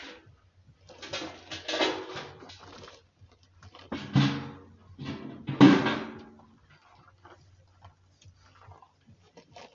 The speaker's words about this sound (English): Those are owls, by the way, though.